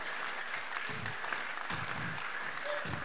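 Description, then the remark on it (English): A crowd claps hands steadily, a dense wash of overlapping claps at an even level, with faint voices murmuring underneath. “Clap your hands well.”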